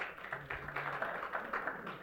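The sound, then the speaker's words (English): An audience clapping in a steady, dense patter of overlapping hand claps, moderately loud and fairly even throughout, with no voices over it. “Stop clapping.”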